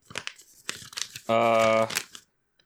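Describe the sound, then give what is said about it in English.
Loud paper crinkling and tearing in quick rustling bursts as a package holding a raccoon finger puppet is unwrapped, interrupted midway by a steady, buzzy tone lasting about half a second before a final crumple. “Alright, I see there's paper. Oh, here's what it is.”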